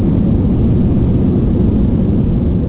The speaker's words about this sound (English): All right, let me get this big iron bird on up off the ground. I rubbed my two little coins together and bought me an airplane.